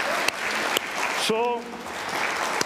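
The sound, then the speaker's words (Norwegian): A crowd claps steadily throughout, a dense, sustained wash of applause with a brief voice rising above it partway through. “Skal dere gi han en klapp for det?”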